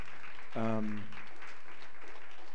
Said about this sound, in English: Wow, come on, give the Lord another hand clap. Excellent, excellent, excellent word.